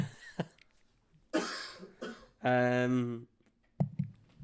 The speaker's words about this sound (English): Cough then. Okay, one sec.